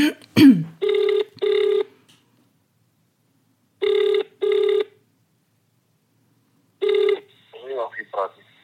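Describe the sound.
An outgoing call's ringback tone, on a call placed from the UK, sounds in steady double bursts, three cycles of a clear buzzing purr, before a voice answers at the end.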